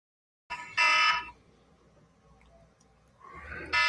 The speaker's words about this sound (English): Oh, hang on a second. My phone's been going off like crazy all morning.